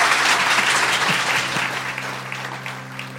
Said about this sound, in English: With that, please join me in a big round of applause